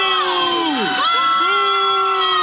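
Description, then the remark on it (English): A loud crowd of young students booing together as a student dressed as an East German soldier walks across a stage, a sustained wall of jeering tones with pitches that slide downward and then hold steady, with no clear speech. “Here are the students booing this kid as he walked across the stage, and a student that witnessed the act breaking down exactly what happened.”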